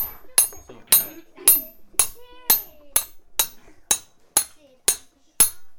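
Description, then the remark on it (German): A hammer strikes metal rails again and again as a mechanic changes a locomotive wheel: about a dozen loud, ringing clangs falling in a steady, quick rhythm, each sharp hit leaving a brief metallic shimmer. “Es klingt, als ob jemand mit einem großen Hammer auf die Schienen draufschlägt.”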